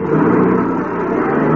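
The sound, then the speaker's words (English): A car engine roars and revs hard as a man hops into his car and speeds off in a hurry, a loud, continuous rumble lasting under two seconds with no voices. “Hopped into his car and took off like a scalded skunk.”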